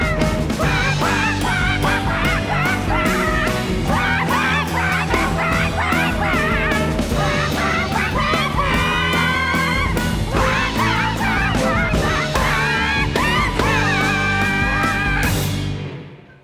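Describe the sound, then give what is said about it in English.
A loud, dense chorus of squawking parrots, harsh honking calls overlapping continuously over a low rumbling backdrop, then fading out at the very end. No talking. “Oh my gosh, it's the swearing parrots!”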